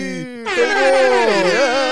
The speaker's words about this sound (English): Drops for the segments. We really got just the default like siren.